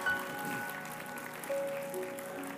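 A church audience claps together in a dense, steady wash of applause, clapping to the Lord after a prayer, with a few faint sustained tones ringing underneath.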